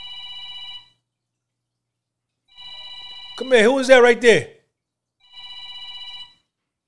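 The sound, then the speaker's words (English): A phone rings in three steady electronic bursts, each about a second long with pauses between, and a man speaks briefly in the gap before the last ring. “Who is that on that phone?”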